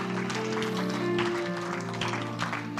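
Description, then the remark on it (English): An audience claps hands in praise to God in a dense, steady wash of applause, with sustained organ-like musical tones holding underneath throughout. “Give Him a hand clap of praise in this house.”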